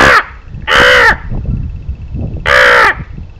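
A crow caws three times, loud and harsh, each call short and raspy with an uneven pause between them, over a low rumbling outdoor background.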